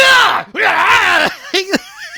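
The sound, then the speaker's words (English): A man's voice imitates John Kreese's guttural growling and yelling at Daniel as he comes out from behind a cardboard cutout: two loud, strained, sustained roars, then a couple of short, sharp yelps and a fading wavering cry. “You see the cardboard cutout, but John Kreese comes out behind the cardboard, starts growling and yelling guttural style at Daniel.”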